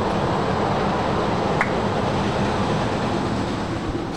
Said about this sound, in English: let's open up the window real quick. We got a train coming by. Chugga, chugga, choo-choo.